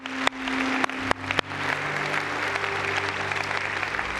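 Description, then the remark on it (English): An audience breaks into sustained applause for the Lord, a dense wash of many hands clapping at steady volume, with a few sharp louder claps standing out near the start over a low hum. “Let's clap for the Lord, shall we?”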